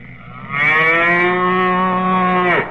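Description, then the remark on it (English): A single long, loud cow moo, rich and droning, holding steady for about two seconds before dropping off abruptly at the end. No voices accompany it. “a cow? You're going to put a cow in our backfield?”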